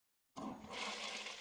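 A toilet flushes with a sudden loud rush of water that starts abruptly after a brief silence and keeps roaring steadily, with no voices.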